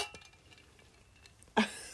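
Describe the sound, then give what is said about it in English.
Glasses clink in a toast: a single bright clink rings out near the end, sharp and loud, with a shimmering ring that lingers briefly after a quiet stretch of low background noise. “We're back again. Cheers.”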